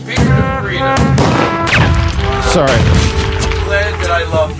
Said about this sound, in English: Oh, was that a musket squad? Sorry, there was a gunshot that came through real quick. It was crazy. I mean, geez Louise. It sounded like a Civil War musket.